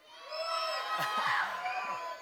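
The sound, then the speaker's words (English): Children spread around a church sanctuary scream and shout together at once when asked to, a sustained, overlapping burst of high-pitched voices filling the sanctuary for a couple of seconds. “Kids, I need to hear you. I know you're spread around the sanctuary, but can you let me know you're here? Go ahead and scream.”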